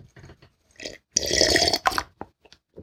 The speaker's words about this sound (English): You don't mind if I sip from this coffee, do you?